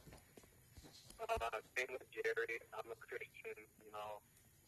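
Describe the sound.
A person talks over a thin, crackly remote line, with a steady background hiss and faint high whine of static running under the voice.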